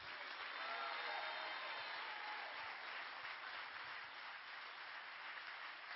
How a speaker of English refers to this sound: If you're going to keep clapping. Keep clapping. Keep clapping. Don't. Keep. Come on. Keep.